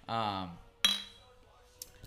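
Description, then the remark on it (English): A short burst of voice gives way to a sharp glass clink of glasses in a toast that rings briefly and fades, followed by a fainter second tap near the end. “Cheers, boys.”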